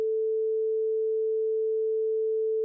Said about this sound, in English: So what are some of like the really basic sounds that you can make with these instruments? Well, let's listen to a sine wave.